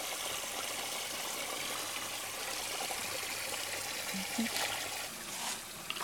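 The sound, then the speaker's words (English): Fish splash at the surface of water as they come for food being fed to them, with a few brief, sharp splashes breaking through a steady background wash of flowing water. No one speaks. “Oh, fish are jumping.”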